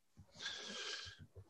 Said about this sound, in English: made a curious face while sniffing his peanut beer there.